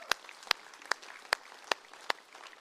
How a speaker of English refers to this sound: In Jesus' name, amen. Let's clap. That is worth celebrating.